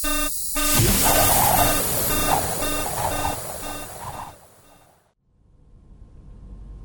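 An airlock alarm blares in a rapid, steady series of electronic beeps over harsh static-like noise, loud, then cuts off abruptly, leaving a low hum.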